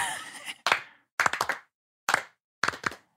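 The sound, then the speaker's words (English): A group claps along in short rhythmic bursts, sharp, crisp handclaps bunched into quick clusters with brief silent gaps between, following a steady beat after a wash of noise at the start. “Let's try and do a little clapping.”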